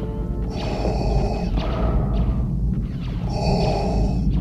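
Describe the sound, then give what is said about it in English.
Slow, heavy mechanical breathing through an aqualung breathing device, recorded with a microphone placed inside it; Ben Burtt's sound for Darth Vader's breathing in Star Wars: two long rasping breath cycles, each with a hissing, whistling inhale and a lower rushing exhale, loud and steady with no voices. “And what I like about it as a sound guy is it's a really simple sound, as you've been put a microphone inside an aqualung breathing device and recorded the breathing.”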